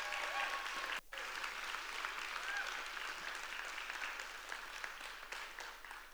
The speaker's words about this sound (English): She won't ask you to do this, but can we give her a round of applause for writing a book?